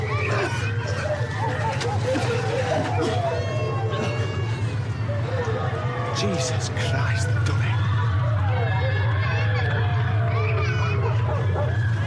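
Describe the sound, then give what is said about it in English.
A dense, loud crowd hubbub with screams and the rumble of a blast wave, with wailing babies and barking dogs rising through the din throughout, and a man's voice briefly speaking over the commotion. “laced throughout that horrible background noise are two particularly distressing sounds: babies crying and dogs barking.”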